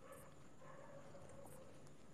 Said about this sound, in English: I think a dog is eating an animal at the moment. I don't know if you guys can hear that. There's like something is suffering.